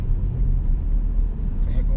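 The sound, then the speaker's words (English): Steady low road rumble of traffic fills the whole two seconds, a loud engine-and-tire drone with faint voices murmuring underneath. “Yeah, it's always some of this traffic out here.”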